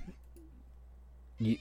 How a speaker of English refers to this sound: My cat apparently wants to add to the conversation. I don't know if she's trying to tell me the pitching matchups.